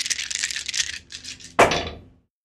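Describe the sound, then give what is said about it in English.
Dice rattle and clatter in a quick, busy burst, followed by a sharper impact as they land and skitter to a stop, fairly loud with no talking. “So go ahead and roll those dice.”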